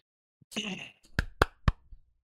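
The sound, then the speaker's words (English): Three sharp hand claps in quick, slightly uneven succession, each a crisp snap, coming just after a short burst of rustling noise; no one speaks. “I don't know if the mic picked it up, but I clapped three times.”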